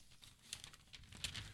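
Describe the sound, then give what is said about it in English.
A paper page is turned, a faint dry rustle with a couple of soft crinkling swishes. No voices. “I'm just turning the page, ladies and gentlemen.”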